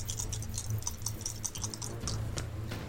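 Three small dice rolled for a tabletop role-playing game check clatter and tumble across a hard tabletop in a quick, irregular burst of sharp clicks, with a low steady hum underneath and no voices.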